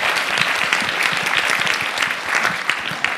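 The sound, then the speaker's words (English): A crowd applauds the JCC steadily, a dense wash of many hands clapping at a lively, even pace with no voices standing out, sustained at a fairly loud level throughout. “I'll say before we do the last question is, as I really, truly want to thank everyone, especially the JCC, if we can give them a really quick round of applause.”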